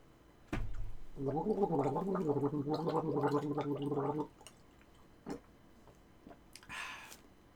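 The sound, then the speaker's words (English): A person gargles water for about three seconds, a steady bubbling, throaty rattle with a hum-like tone, followed by a few soft clicks and a brief breathy exhale; some of the water spills onto their shirt. “For those of you listening, I just gargled water and then some of it spilled out onto me.”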